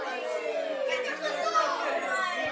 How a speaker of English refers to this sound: Our heroes make it back to the Rescue Guard Tower, where a large crowd of Parisians have started to gather.